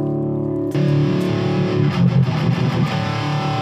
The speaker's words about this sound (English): Oof. Well, that's a problem. Like, with the P90s, you get a lot of that hum.